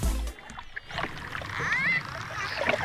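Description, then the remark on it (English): A dolphin whistles in a few quick, rising and falling squeaky chirps over steady splashing water, the sounds moderately loud. “It was a dolphin.”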